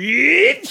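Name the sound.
sneeze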